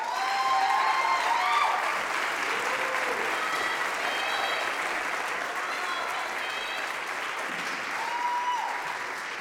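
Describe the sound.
Audience applause, a dense, steady wash of many hands clapping that holds for the whole stretch, with a few scattered whoops and cheering voices rising above it.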